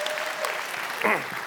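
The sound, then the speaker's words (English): An audience claps in a dense, steady burst of applause, with a brief voice rising faintly over the clapping near the end. “It got applause last service when I told him I made a friend, by the way.”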